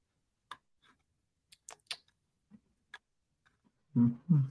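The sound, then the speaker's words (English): A draft clock runs while a participant takes time to make a pick, ticking with sharp, dry clicks at slightly uneven intervals, fairly quiet, before two louder, muffled low thumps near the end. “Sam Olsen really letting this clock run”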